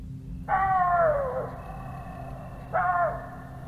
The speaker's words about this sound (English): Then they heard the noises come closer to the rocks, getting closer and closer to them. Audibly, they were voices. As they got closer, the voices turned into coyotes yapping.